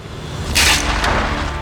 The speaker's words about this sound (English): He threw himself in front of the blade, holding his staff up to block it. The wood splintered, breaking in two beneath the blow.